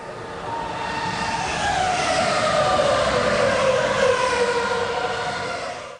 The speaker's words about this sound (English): Yeah, it's a Formula One car. One of those fast cars.